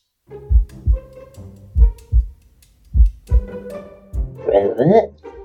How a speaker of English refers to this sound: When you get about 30 feet from the tree, both you and Vim start feeling that faint, slow heartbeat in the back of your head.